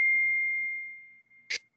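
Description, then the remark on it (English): A phone notification chime: a single bright, high tone that rings out and slowly fades over about a second, followed by a brief soft click. No one speaks. “Someone got a notification. Yeah, that was me.”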